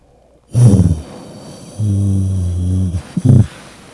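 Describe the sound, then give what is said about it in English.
A person imitates the droning hum inside an airplane cabin with their voice: a short buzzy burst, then a sustained low nasal drone for over a second, ending in a brief rumbling burst. Fairly loud, no talking. “What does the inside of an airplane sound like to you?”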